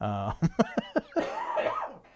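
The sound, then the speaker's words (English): A loud fit of coughing from a person who is a little under the weather: about five quick hacking coughs in a rapid row, then a drawn-out, strained vocal rasp as the fit trails off. “Is there a player that's not on the list for you once you're done coughing?”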